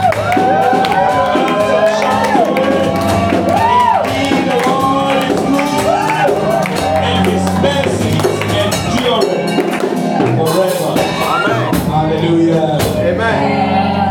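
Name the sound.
audience shouting and cheering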